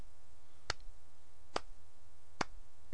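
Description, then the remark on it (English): A slow clap: three single, crisp hand claps spaced evenly apart at a deliberate pace, with quiet between them and no talking. “It's the slow clap you get for sitting through this episode, because I know I wouldn't have been able to.”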